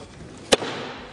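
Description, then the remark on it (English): A single loud gavel bang as Speaker pro tempore Patrick McHenry ends the US House of Representatives session after a vote, declaring recess: one sharp, hard crack that cuts off almost instantly, with a short fading tail over quiet background noise and no talking. “Congressman Patrick McHenry, now the Speaker pro temp, ending the session with an emphatic gavel bang.”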